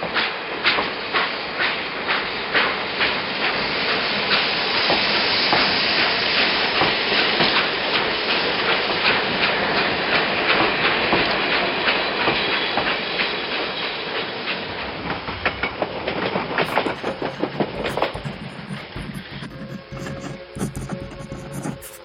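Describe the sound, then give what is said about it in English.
A steam train travels along railway tracks toward Middlesbrough with a steady rhythmic clatter of wheels over rail joints, thinning toward the end into scattered clicks and rumbling. No one speaks. “Whatever the events, I'm sure the weekend went quickly, and before long, it was Tuesday morning, and Fred was on a train, wending his way back to Middlesbrough.”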